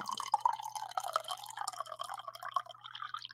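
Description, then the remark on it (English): Liquid pours gently and steadily into a glass, a continuous trickling stream whose pitch creeps upward as the glass fills, with no one talking. “Let's get the pour going here.”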